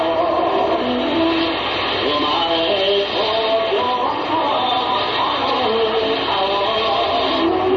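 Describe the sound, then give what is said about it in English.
A dense, continuous wash of slot machines ringing from a slot machine emporium in the Ginza on a windy Saturday night, with countless overlapping electronic chimes and short melodic tones at shifting pitches, steady and loud throughout with a faint murmur beneath. “Those are slot machines you're hearing. You can hear them for blocks.”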